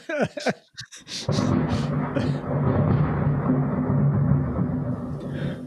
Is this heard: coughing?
no